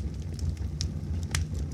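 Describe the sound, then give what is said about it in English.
A fireplace fire: a steady low roar with sharp, irregular crackles and pops scattered throughout, moderately loud, with no voices present. “Set to sleep-inducing music and this beautiful fireplace.”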